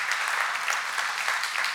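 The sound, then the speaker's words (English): A church audience applauds its guests, a dense, steady patter of many hands clapping at once, moderately loud and sustained without any voices on top. “And but if you're a guest today, can we give our guests a quick clap?”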